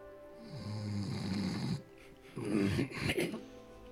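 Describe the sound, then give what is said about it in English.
A voice imitates the loud snoring of the character Kobayas: two long, rattling snore breaths separated by a brief pause, the second rougher and more broken. “You hear the snoring of Kobayas.”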